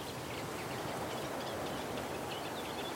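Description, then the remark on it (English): Reeds in a reed bed beside a lake in England rustle steadily in the wind, a continuous airy hiss that never lets up, with a few faint bird calls in the background and no voices. “It's got beautiful yellow flag irises, and you can probably hear the reeds rustling in the wind.”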